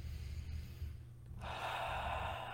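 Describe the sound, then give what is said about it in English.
A single deep, audible inhale by a seated person during a breathing exercise begins partway through and draws on steadily to the end, breathy, over a low constant hum, with no talking. “Sitting in it, breathing it in.”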